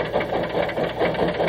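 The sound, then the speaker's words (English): A small steam locomotive engine built in 1855 runs steadily, its tappets clicking in a quick, even mechanical rhythm over a continuous hissing chug from a little steam escape valve, with no voices. “Hear them tappets? Little steam escape valve there.”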